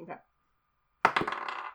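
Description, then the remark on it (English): A small die hits a hard surface with a sharp clack, then bounces and rattles in a quick run of light, bright clicks. A brief soft rustle comes first, followed by a moment of quiet. “Okay, so you throw the die.”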